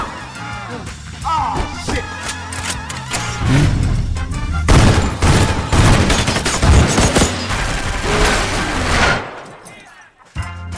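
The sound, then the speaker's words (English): Loud, rapid bursts of gunfire crackle in sync with a driving music track, volleys of shots piling up in a dense barrage before cutting off abruptly near the end. “we wanted the gunshots, the flashes of the gunshots, to be in sync with the music too.”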